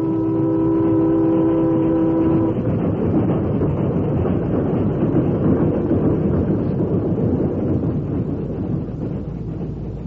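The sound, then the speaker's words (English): A loud train horn sounds with steady tones for a couple of seconds, then a train rumbles past at the entrance to a cut with continuous roaring and rattling wheels, no voices. “It was a race against time, but as the train whistled once more and showed at the entrance to the cut, the last log was dragged off to the side.”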